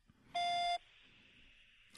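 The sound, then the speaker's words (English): A single loud, steady electronic beep tone lasts under half a second, the kind heard before recording a voicemail, then fades into faint background hiss. No one speaks. “This person is not available right now. Please leave a message after the beep.”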